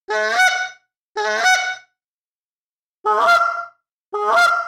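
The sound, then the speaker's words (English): Four loud honks from a Jargon goose call, blown in two pairs with a gap between them, each a brassy, nasal honk that closely mimics a real goose. “Yeah, man, that Jargon call sounds like a goose.”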